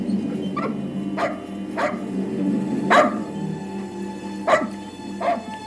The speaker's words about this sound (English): Look at the dog.